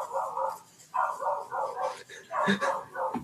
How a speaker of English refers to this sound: Dog, we can hear the dog. It's fine. We can continue. Neighbor, was it a neighbor?